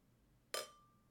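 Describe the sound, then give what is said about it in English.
A single bright clink of beer glasses tapping together, sharp at first and then leaving a thin ringing tone that fades slowly, with no talking. “Cling! Cling! Why did that sound like it actually went? Because your glass goes off.”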